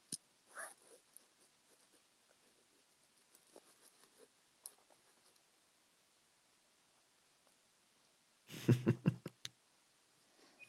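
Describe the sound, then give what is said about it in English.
Soft, intermittent scratching of pens as people draw a sheep on paper against a timer, with a brief louder clatter and rustle near the end; no one speaks. “At the same time I tell you the name, I'm going to click go on my timer, and then I'm going to start drawing as well.”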